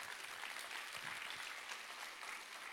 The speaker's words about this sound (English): I love that clap. That's the kind of clap I was hoping for, because it's like, because that's not like a perky clap. You guys just clap the way I feel right now, which is like, yeah, we made it, all right.